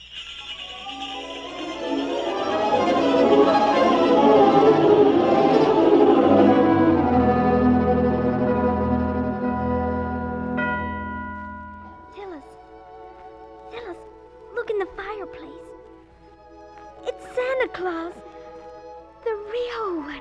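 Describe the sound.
Bright, shimmering bells ring and swell for several seconds, then slowly fade away, after which quiet voices talk in short exchanges.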